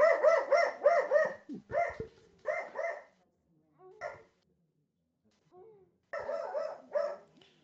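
A dog barks at someone at the back door in quick, loud bursts of several yaps each, with short pauses between volleys and a longer quiet gap before a final flurry.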